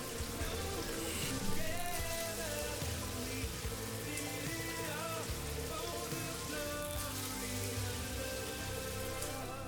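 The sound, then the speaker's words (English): A shower turned on in a bathroom: steady rushing water, a dense continuous hiss of spray pattering down without pause for the whole stretch, fairly loud and even, with no voices. “He thought nothing of it as he turned on the shower.”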